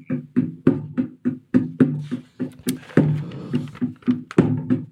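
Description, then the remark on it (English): An Indian hand drum is struck over and over in a quick, fairly steady rhythm, each hit giving a resonant, booming tone. It sounds loud, with no talking. “You're banging your Indian drums again.”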